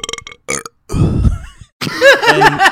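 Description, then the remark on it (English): A loud, drawn-out burp rumbles for nearly a second after a few short clicking sounds, then a voice starts up right after it. “The entire time he's talking, I'm just burping.”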